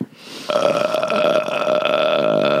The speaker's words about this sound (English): Wow, only one burp this whole episode. No, there was a few that you're not I don't even about. Hear them anymore. Yeah, they're there. They're there.